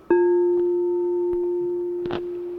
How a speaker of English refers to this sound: So then let us hear the bell.